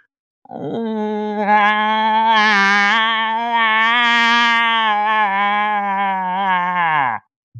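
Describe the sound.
A man's voice imitates a cow moose call: one long, loud, nasal moaning bellow held for about seven seconds, wavering slightly in pitch before cutting off abruptly.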